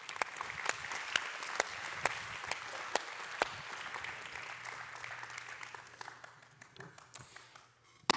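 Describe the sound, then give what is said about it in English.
An audience applauds to welcome a speaker, with dense, steady clapping and a few sharper individual claps standing out, gradually thinning and fading toward the end. “Give her a big round of applause and welcome our friend Jill Shuck.”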